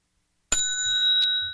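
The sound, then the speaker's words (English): A bright bell dings once with a sharp strike, its clear high ring sustaining and slowly fading, with a quick second tap partway through. No one speaks. “Seriously, all the dinging and ringing and you screaming about being rudely interrupted and all, that's all performance art.”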